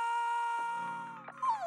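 A dog howls in a sustained, wavering tone with rich harmonics, the pitch dipping and then rising again. It is loud, with no talking over it.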